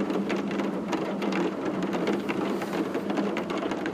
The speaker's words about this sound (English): Somewhere in Moscow this year, a person stood in silence and held their phone up and just listened to rain.